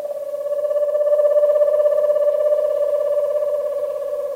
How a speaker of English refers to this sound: In an eastern woodland, the eerie trills and whinnies of an eastern screech owl are among the first sounds of the night. An eastern screech owl is petite, standing just under 9 inches tall.